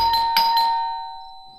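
doorbell ringing

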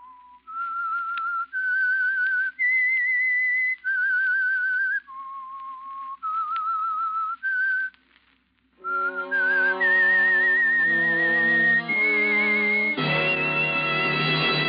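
whistled theme melody

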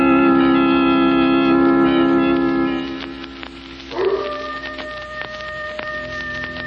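coyote howling

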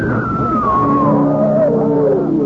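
woman screaming

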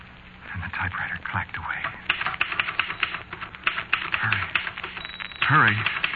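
typewriter keys typing

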